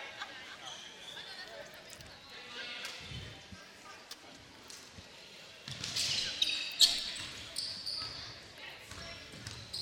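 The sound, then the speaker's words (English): A basketball is dribbled in a steady run of thuds across a gym floor during a game, as the ball is brought up court and a three-pointer is taken from the top of the key, with a noisy crowd and indistinct voices that swell louder toward the end. “Kingston brings the ball up. Evan Neff against Morris. It's a screen. Dribbles and takes the three at the top of the key.”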